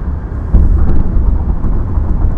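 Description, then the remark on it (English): A loud, continuous low rumble of car tires rolling over a rough, bumpy road that bounces the car, with a gritty, uneven texture and no voices. “Yeah, but, I mean, it's literally bouncing the car, folks.”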